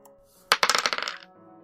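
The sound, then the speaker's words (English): Two six-sided dice are rolled for a tabletop game and clatter across a hard table, landing on a 6 and a 5: a sharp first impact, then a quick run of bouncing clicks that speed up and fade over about a second. Fairly loud, with no talking. “We're good at rolling dice in this game about dice rolling.”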